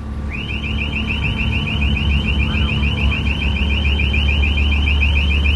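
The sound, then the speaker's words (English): A ship's man-overboard alarm, sounded because a crew member has fallen out of the boat into the water, rings continuously as a rapid, high-pitched electronic warble, loud and steady throughout, over a constant low engine rumble. “Alarm for a man overboard.”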